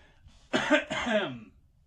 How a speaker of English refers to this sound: Had to clear my throat. Had to get ready for this with this summer cold here.